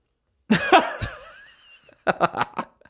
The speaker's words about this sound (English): Sorry, am I boring you? It's the most gigantic yawn